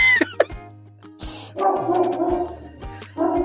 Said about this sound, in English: I have to break for the dogs barking.